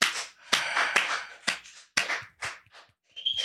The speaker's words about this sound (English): That's our canned studio applause, is two guys clapping and whistling. That's it.